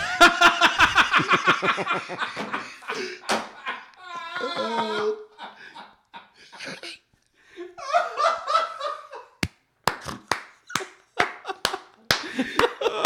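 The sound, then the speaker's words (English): Laughter and talking give way to a handful of sharp, slow hand claps, unevenly spaced, as a man claps for himself, with voices continuing between them. “He's clapping for himself.”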